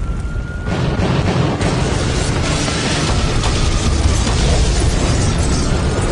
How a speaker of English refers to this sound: Every window on the third floor blows out in a magnificent halo of flame. The force of the explosion flings the man off the ladder.